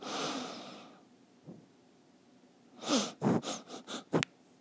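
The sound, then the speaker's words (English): A person sniffs like a dog on a music track, starting with one long airy exhale, then a rapid run of five or six short, sharp nasal sniffs, fairly loud, with no talking. “I'ma sniff on the track for a little bit. Like a dog.”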